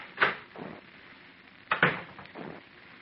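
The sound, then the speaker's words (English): An office door in a brand new building opens and shuts twice in a row, each time a sharp latch click followed by a softer swinging thud, clear with no one talking. “I stepped outside the office door and walked over to the brand new stairway of that brand new building.”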